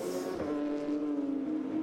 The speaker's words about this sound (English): So he's going to have lost that coming over the top of the rise as the car goes light, gets on the power too early.